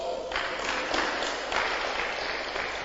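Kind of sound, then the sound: crowd, audience clapping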